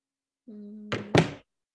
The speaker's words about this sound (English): Oh my God! Who slammed? Was that your phone? Yeah. That was loud as fuck. Yeah, because I was like. On the table.